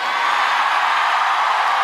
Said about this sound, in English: Why are you cheering for this horse?